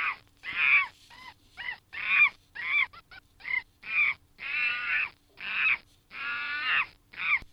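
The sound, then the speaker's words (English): A monkey gives a loud series of harsh, screechy calls, about a dozen short and longer bursts in an uneven rhythm with brief gaps between them, and no voices. “And that is a monkey.”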